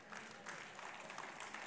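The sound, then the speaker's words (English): Audience clapping, a dense, steady patter of many hands at moderate volume, continuing without pause for a couple of seconds with no one speaking over it. “You're clapping, but the Gospel of Mark does not agree.”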